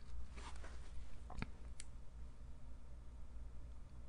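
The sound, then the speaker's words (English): Paper being shuffled and crinkled in a few short, crisp bursts during the first two seconds, then only a faint low hum for the rest. No one speaks. “To be fair, I should let you guys know that I have employed a paper shuffling team to make these noises, because I just felt like I wasn't able to make the amount of paper noises that a podcast should have.”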